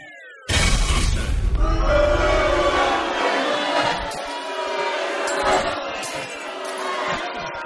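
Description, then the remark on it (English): A crowd bursts into loud, sustained booing, a dense wall of low drawn-out voices that starts abruptly and holds steady for several seconds with no clear speech. “He's booing himself.”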